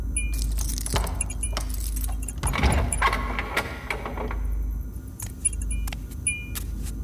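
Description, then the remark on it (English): A ring of keys jangles and clinks in several bright metallic bursts as a key is chosen to unlock a door, with ringing high tones between them, over a steady low engine-like rumble and no voices. “I wondered how I knew which key would unlock the door, but it just came as natural now as my name.”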